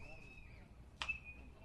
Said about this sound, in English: Popped up into the crowd. There you heard the thud. Hope everyone's okay.